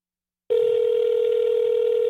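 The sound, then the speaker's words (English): A busy-line telephone tone heard while calling someone who is on the other line: after half a second of silence, a steady, unbroken mid-pitched electronic hum sounds at constant loudness to the end, with no voices. “Sounds like he's on the other line.”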